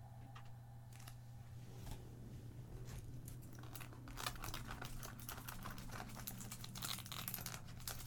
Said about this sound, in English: The sound of tearing paper comes next. Thump.